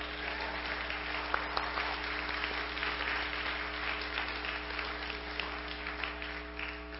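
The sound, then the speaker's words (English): An audience applauds steadily as the speaker finishes a sermon, a dense, even wash of many hands clapping that holds at a constant level for several seconds, with a low steady hum running underneath. “You can applaud now.”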